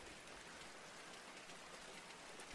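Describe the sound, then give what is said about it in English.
Soft, steady rain falls outside a window, a gentle continuous patter with a faint hiss, ending in a brief sharper tap right at the close. “You try to focus on the gentle sounds of the rain outside your window.”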